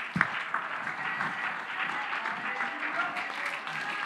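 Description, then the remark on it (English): An audience clapping hands in a steady, dense wash of applause that holds at an even level for several seconds, with a sharp burst near the start and a faint murmur of voices underneath. “Clap your hands.”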